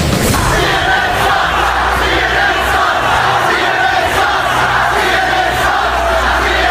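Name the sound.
crowd chanting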